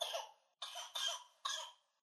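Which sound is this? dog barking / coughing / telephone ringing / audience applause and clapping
coughing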